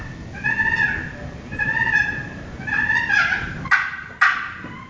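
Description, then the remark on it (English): Three drawn-out, raspy turkey purrs played on a friction box call, made by pressing the knuckle of the index finger on the call and dragging it, each a rolling mid-pitched trill lasting about half a second, followed by two sharp clicks. No one speaks. “is the one who taught me how to purr like that”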